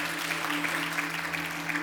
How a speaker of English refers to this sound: Come on, give yourselves a great clap offering. Amen.